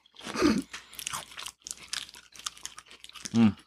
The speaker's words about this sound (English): It makes for good podcast. This does. We're ASMR now. The crunching. Nom, nom, nom, nom.